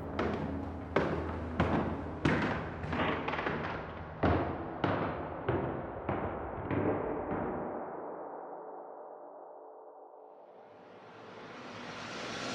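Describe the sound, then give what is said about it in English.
A dozen or so heavy footsteps thump in a steady rhythm in a cabin, loud at first and gradually fading as they turn and move toward the cellar, followed by a rising hiss of noise with no voices. “as the footsteps turned and thumped towards the cellar.”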